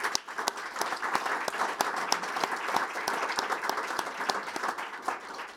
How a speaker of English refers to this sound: They all merit our thanks and our applause for a second.